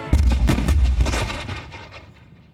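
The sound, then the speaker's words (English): Heavy cannon fire from the British warship HMS Leopard on the USS Chesapeake, June 22, 1807, booms in a rapid volley of deep, overlapping blasts, loud, with rumbling echoes that trail off and fade. “On the afternoon of June 22, 1807, the British warship, the HMS Leopard, unloaded cannon fire on the USS Chesapeake.”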